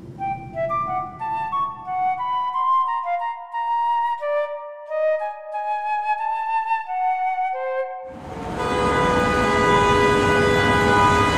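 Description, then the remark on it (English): A subway train sounds its horn in sustained, shifting tones, then a loud rushing roar of the passing train swells in and fills the last few seconds. No one speaks. “Over there, the subway entrance. It looks pretty crowded”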